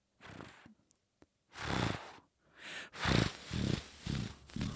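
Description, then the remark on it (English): A person imitates a cat's purr with a series of breathy, rumbling bursts that grow louder and more rhythmic toward the end, with no words spoken. “because again, I don't have a cat at my house”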